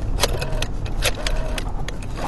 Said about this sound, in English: I got an old black rotary phone. Listen to this shit.